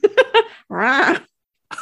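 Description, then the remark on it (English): A voice imitates a mummy's groan that comes out like an angry cat: three short, sharp yowls, then a longer raspy, wavering wail, loud with no other sounds. “That's more like a angry cat.”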